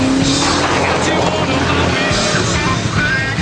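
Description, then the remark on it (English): A steady, loud rumble of a car engine and road noise from inside the vehicle as it is being driven, with a low droning hum running continuously and a voice faintly mixed underneath. “I'm driving in my car now.”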